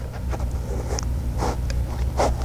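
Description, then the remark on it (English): A dog named Sage sniffing right at the microphone, a handful of short, breathy snuffles spaced unevenly over a steady low hum, with no one talking. “She sniffed the microphone.”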